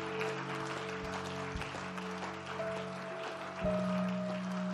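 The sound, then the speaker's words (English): A crowd claps steadily and continuously for people coming forward after raising their hands, a dense wash of many hands at moderate volume, with low sustained tones droning underneath. “Please, oh, clap for them as they come.”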